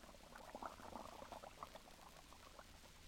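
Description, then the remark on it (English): Lux soap flakes fizz and bubble into suds as water runs into a dishpan, a dense crackle of tiny pops and frothy gurgles, fairly soft, steady throughout with no voices. “Then you turn on the water. And almost at once, the flakes melt into a soft, frothy mass of bubbles.”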